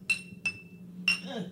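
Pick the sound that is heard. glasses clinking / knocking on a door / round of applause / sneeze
glasses clinking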